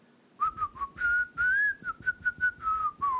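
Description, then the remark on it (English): A person whistles a short, wavering tune, the single clear tone sliding up and down in a series of quick notes with brief breathy gaps between them, made with the sides of the tongue between the teeth and the tongue moving around to change the notes. “Did I whistle? Did I do it?”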